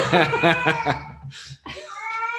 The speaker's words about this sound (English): It's not a farming podcast if we don't have animals in the background. Sorry about that. We have a cat that's actually deaf, and so he's very loud. Can't hear himself. He can't hear himself.